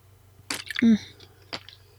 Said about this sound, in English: I'm gonna take a sip of water before we get into the next thing.